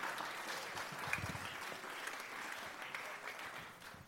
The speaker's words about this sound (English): But once again, a round of applause. Let's start for all of our guests.